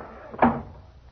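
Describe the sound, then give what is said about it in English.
The front door of a brownstone gambling house, opened by a patrolman in the rain, shuts with a single solid thud, its knock ringing briefly before fading into quiet. No voices. “The patrolman on the door let us in.”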